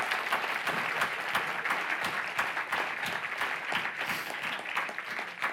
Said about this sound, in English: I heard one person wanted to clap, one or two. Can we do that? Yes.